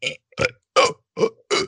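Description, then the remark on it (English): A person voices five short burp-like sounds in quick succession, each a rough, throaty bark separated by brief pauses, imitating belching rather than actually burping. “I was just mimicking. I wasn't actually burping.”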